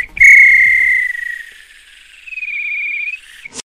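A referee's whistle blows for full time: a loud, warbling blast, a brief pause, then a second long blast, with no voices present.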